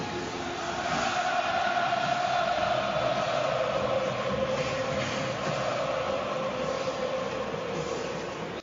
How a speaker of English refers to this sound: But does that sound familiar? You might recognize that sound as the cheering at a rowdy football game. Specifically, that excitement comes from Arrowhead Stadium in Kansas City, Missouri.